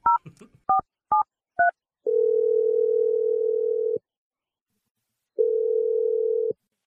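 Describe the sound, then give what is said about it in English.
Four quick telephone keypad beeps in fast succession as a number is dialed, followed by two long, steady electronic phone tones separated by a pause of about a second and a half. Clear, with no voices. “I'm dialing the number.”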